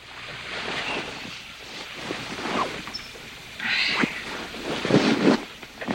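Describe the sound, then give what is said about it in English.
Bed sheets rustle and shift as someone wakes up, in soft, irregular swishes, with a fuller, louder sweep of fabric partway through and a few quicker rustles toward the end. “Rustling the sheets.”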